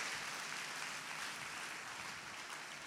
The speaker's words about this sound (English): Clap your hands if you love the Lord.